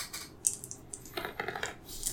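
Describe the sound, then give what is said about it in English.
Dice clatter and tumble across a hard surface in a quick series of light, sharp clicks that bunch together and then settle, fairly quiet, with no voices, as they are rolled to determine a role-playing character's stats. “I'm gonna let the dice decide my fate.”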